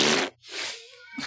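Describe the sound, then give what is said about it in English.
Someone blows a few quick, sputtering raspberries with their mouth, imitating farts: short noisy bursts with a brief gap between them, fairly loud, with no talking. “Just farting sounds.”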